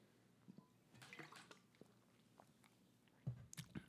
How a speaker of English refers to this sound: Let me drink something, because bitch been chatting. I got the OD cotton mouth. My lips over here white. I'm foaming out the mouth and shit.